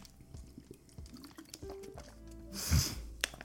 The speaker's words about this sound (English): All right, let me take a sip of water, because my throat is fucked up.